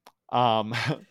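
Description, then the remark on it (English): A single loud sneeze: a short voiced intake rising into a sharp, breathy burst, heard on its own. “Bless you.”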